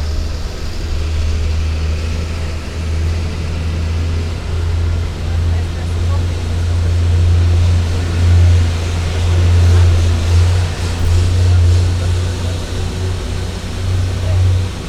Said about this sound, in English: At this time, just want to remind you to remain seated at all times while the tram is in motion.